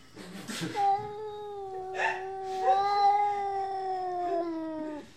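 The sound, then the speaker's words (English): Two cats, Jellybean and a neighbor cat, yowl at each other through a screen door in long, drawn-out wavering howls that rise and overlap, sustained, with no talking. “They often sit completely still, staring at each other through Becky's screen door and making this otherworldly noise.”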